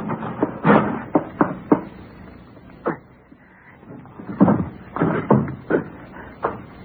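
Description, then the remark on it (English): A folding phone booth door in a bar is pushed and pulled open and shut, giving a rapid series of loud clunks and rattles with a brief pause in the middle. “Well, I'll hold the door.”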